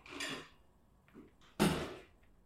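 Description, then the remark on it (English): A refrigerator door is pulled open with a soft whooshing rustle as a beer is taken out, followed by faint clicks and bottle clinks, then a sharp thump as it swings shut. “Gotten up to the fridge, opened and closed it without any hesitation.”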